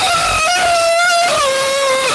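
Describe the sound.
A turkey lets out a loud, sustained scream lasting about two seconds, its piercing, strained tone holding steady and then dropping slightly in pitch midway through. No one speaks over it.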